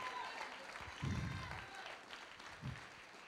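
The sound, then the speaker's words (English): An audience claps steadily to give praise to God, a dense wash of many hands, with faint voices murmuring underneath and a couple of louder swells partway through. “Keep on clapping your hands if you're changing already.”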